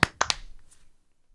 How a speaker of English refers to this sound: then clap sync. 3, 2, 1.